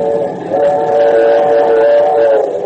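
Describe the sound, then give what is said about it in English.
In the Dick Tracy radio drama, a train rumbles along the rails while a steady, sustained whistle tone sounds continuously over the clattering noise, loud, with no voices. “As long as we're not on a freight train, we've got nothing to worry about.”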